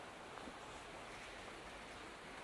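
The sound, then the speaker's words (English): A steady wash of moving water, like waves lapping continuously, soft with no distinct individual splashes and no voices. “There's a lot of water.”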